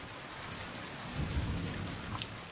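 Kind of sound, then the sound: nature, heavy rain with thunder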